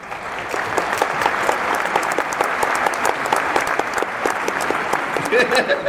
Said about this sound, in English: Exactly. He's here. You actually need a round of applause.